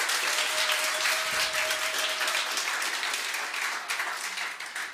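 Sustained audience applause at a church talk on discipleship, welcoming a pastor to join the speaker, a dense wash of many hands clapping at steady loudness for about five seconds, with a faint whistle-like tone briefly audible early on.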